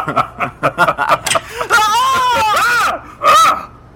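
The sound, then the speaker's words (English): Quick, choppy vocal bursts give way to a long, wavering high-pitched scream, then one more short, loud shriek, all piercing. “Who was that screaming on my doorstep?”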